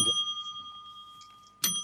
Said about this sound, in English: Two bings of the bell there. Well done. That's 2 points to the Reds.